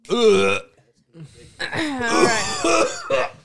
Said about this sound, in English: Disgusting. Did you eat another one? No, I burped. Wow, that is sad. Oh, it stinks so bad.